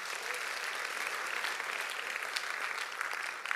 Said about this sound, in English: But I like this church. Clap for yourself.